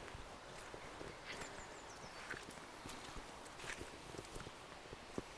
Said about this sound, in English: That's the way dogs experience deep nature connection. The chewing of the stick.